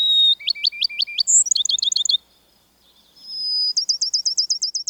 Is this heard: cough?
no